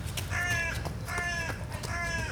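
Three harsh, nasal crow caws ring out in a steady rhythm, loud, over a low rumble of outdoor background noise.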